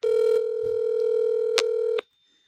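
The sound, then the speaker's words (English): A phone line's ringing tone, heard while placing a call: one steady electronic buzz held for about two seconds, then cut off into silence. No voices. “He's not gonna answer. It says no caller ID.”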